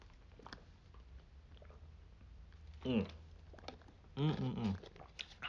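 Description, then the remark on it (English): Two gulps of water as a person drinks, a short one followed by a longer, throatier swallow, with wet mouth sounds over a quiet background. “Hear those gulps.”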